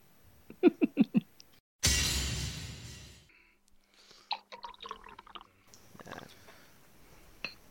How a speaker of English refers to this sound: I'm just pouring myself a glass of delicious Kirin Ichiban beer. Japan's really premium beer.